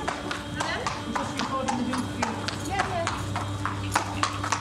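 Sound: horse hooves clip-clopping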